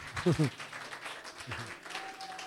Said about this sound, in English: Let's give the Lord a mighty clap.